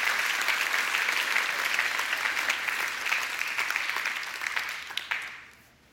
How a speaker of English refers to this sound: Come on, let's clap our hands and thank God all over this room today.